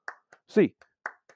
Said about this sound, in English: Get your hands up in the air, Bruins fans. 8 clap time. And 1, 2, 3, 4, 5, 6, 7, 8.